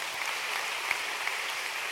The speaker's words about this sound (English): Clap your hands for yourselves.